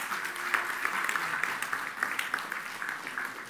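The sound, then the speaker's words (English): An audience applauds steadily, a dense, even wash of many hands clapping at moderate volume with scattered sharper claps, sustained throughout without pause; a round of applause for those sitting on the ground at a packed-out gathering. “And thanks for those that are sitting on the, give those sitting on the ground a round of applause.”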